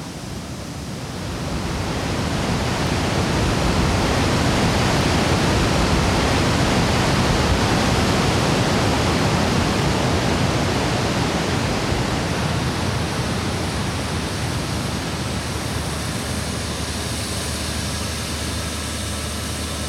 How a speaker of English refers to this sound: Voices fight to overcome the sound of crashing water, and if you're not locked in, the roar of the falls can unfortunately melt into the deafening sounds of the city, urging you to continue your journey to escape reality.